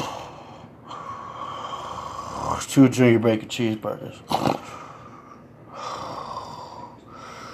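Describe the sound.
A voice imitates the heavy, raspy wheezing breaths of a very fat man ordering food. The breaths are long and drawn-out, pausing briefly for a quick spoken line before the labored breathing resumes.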